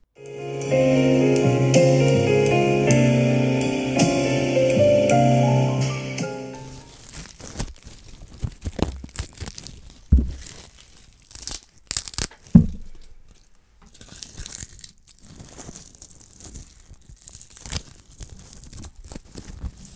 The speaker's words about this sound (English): Next, we have leaf crunching.